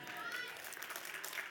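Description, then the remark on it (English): Soft, scattered applause from an audience, a thin patter of claps that stays quiet and steady throughout, as if the clapping is dying down. “See how those claps are getting soft?”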